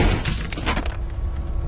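gunshot

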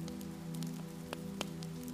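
rain falling

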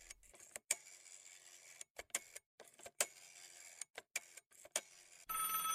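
telephone dialing and ringing

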